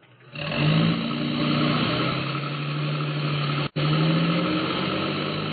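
A truck engine roars to life and revs up, then holds a loud, steady drone as it pulls away, with a brief cut in the sound near the end. No one speaks.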